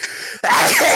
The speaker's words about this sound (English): I have to sneeze now. I have to sneeze.